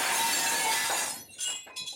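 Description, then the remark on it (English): A loud, brittle shattering as Guy Gardner's head, frozen solid by ICE, breaks apart from one punch by Chance, like a block of ice, lasting about a second, then a few lighter tinkling bursts as fragments scatter. No voices. “Finally, in reference to the JLI story, Chance takes him out in one punch. Guy's head shatters.”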